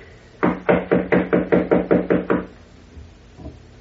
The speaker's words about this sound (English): I see. Ah, here is her suite. I will knock. She must be asleep. Knock again, please, will you?